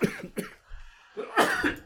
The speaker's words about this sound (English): So I need to cough a second.